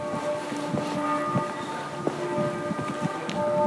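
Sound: church bells ringing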